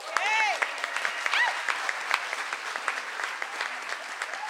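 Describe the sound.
An audience claps steadily for several seconds, a dense patter of many hands, with a few voices whooping and cheering over it near the start.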